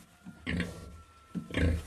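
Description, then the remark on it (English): A pig grunts and oinks in two rough, snorting bursts, each starting with a short low grunt before a louder squealing oink, with no talking. “And that'll be the end of the pigs here in in this part of the country where we are.”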